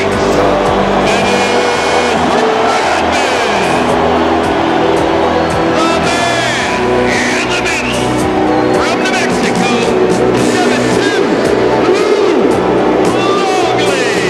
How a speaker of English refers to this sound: Just listen to the crowd and listen to them now. This is at the UC, guys, in 1997. You can't even hear the announcer because they're so loud.